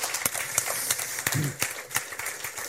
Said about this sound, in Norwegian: Gi deg en god applaus.